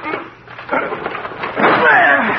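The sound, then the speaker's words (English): Heavy thuds against a locked door as two people put their shoulders to it, then a loud, sustained crash and splintering as it gives way, the noise staying rough and loud to the end. “Well, we've got to break the door down.”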